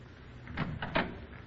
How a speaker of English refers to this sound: Why did you close the door, Louise?